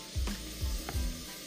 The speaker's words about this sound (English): This heat is really high. I'm gonna pull it down some. All right. Now it's on medium. Still sizzling at a really great rate.